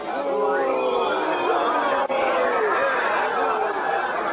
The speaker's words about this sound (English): Listen, my uncle, he's coming through the street now. They're cheering him. Cheering, is it? That's a strange kind of cheering, I'm thinking.